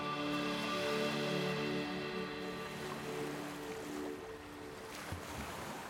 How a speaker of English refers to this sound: Steadying the tiller, you pull on the mainsheet until the sail fills with the fresh breeze, and you head towards the island. The beautiful blue boat cuts effortlessly through the waves, and you begin to relax, lulled by the lapping of the waves again